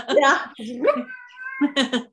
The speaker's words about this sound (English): And we had, oh, your kitty cat.